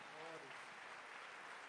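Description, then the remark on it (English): An audience applauds the church's summer choir, steady dense clapping filling the whole moment, with a brief murmur of voices mixed in at the start. “Let's give the Lord a hand clap for our choir.”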